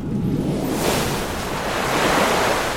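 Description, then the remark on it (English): Rushing water pours out of a well in a steady, loud wash of noise, flowing outward at a good steady pace and swelling slightly as it surges, putting out a fire, with no voices over it. “So it's slow at first when you're casting this spell, but as you finally get a hold of this water, you manage to get it start flooding outwards.”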